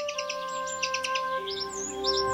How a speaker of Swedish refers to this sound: Kan vi inte bara njuta lite av fågelsången?